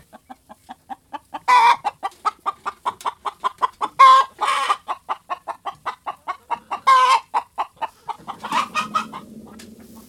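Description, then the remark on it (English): Chickens cluck in a steady run of short, rhythmic pulses, with a few louder squawks breaking through, clear with no one talking. “And, you know, chickens are tropical birds. They would rather be a little warmer than colder.”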